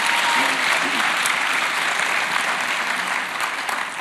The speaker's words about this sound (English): There were 5 services, and it was just fantastic. Let's give them a round of applause and thank them.